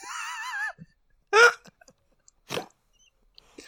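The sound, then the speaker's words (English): Two sharp crunches of square Ritz crackers being crushed, spaced about a second apart, preceded by a brief high, wavering vocal tone and followed by quiet. “So easy for crunching.”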